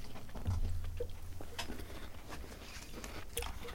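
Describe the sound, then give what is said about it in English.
Quiet crunching of cookie bits coated in white chocolate: a few irregular crackly bites and crumbly snaps over a low, steady background hum, with no one talking. “And the crunch.”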